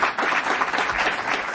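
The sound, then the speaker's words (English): A crowd applauds steadily, a dense, even wash of many hands clapping at once with no individual claps standing out, sustained at a fairly loud level throughout with no voices. “You don't have to clap again.”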